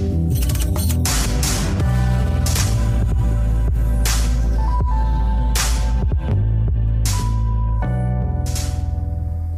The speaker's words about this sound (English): That noise? Water pipes, unfortunately.